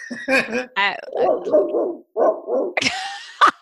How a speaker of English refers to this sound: Oh, now I got the dogs going here.